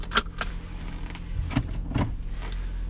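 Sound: getting into a car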